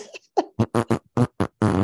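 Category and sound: human body sound, loud fart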